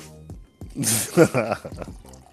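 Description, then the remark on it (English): In Maryland, a man pours himself a cup of water to start his day: water pours in a short, splashy stream into a cup for about a second, with a humming, voice-like tone running underneath and around it. “It's me pouring a cup of water.”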